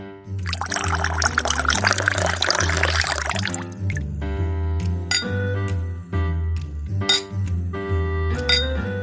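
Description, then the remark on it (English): A 2017 Resonance Pinot Noir from the Willamette Valley, Oregon, splashes into a glass in a steady three-second pour, then a few bright glass clinks ring out at intervals over a low, steady musical backing; no one speaks. “This week, I'm trying a wine from the Willamette Valley in Oregon, and the wine is called Resonance Pinot Noir.”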